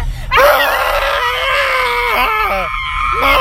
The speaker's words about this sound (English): Yeah, it does. That's just me screaming.